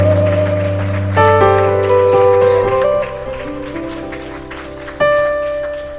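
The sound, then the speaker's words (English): A standing audience at a Sunday morning church service claps and cheers in a steady, dense round of applause for the Holy Spirit beneath loud sustained organ or keyboard chords that shift a few times; no one speaks. “Give the Holy Spirit a round of applause today.”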